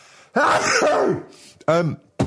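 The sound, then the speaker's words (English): A drawn-out, strained breathy vocal build-up, then a brief pause and a sharp voiced burst, like someone sneezing loudly. “Oh, hang on, I'm going to sneeze.”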